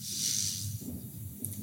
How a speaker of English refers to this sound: And what we're going to do is we're going to breathe into the hand that's on your lower belly. So we'll start off just with the breathing and then we'll do the pelvic floor lifts afterwards. Okay. Okay. So inhaling and fill your lower belly with air.